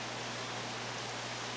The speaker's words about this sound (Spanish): Espero que se estén entendiendo más o menos bien ahí por la lluvia.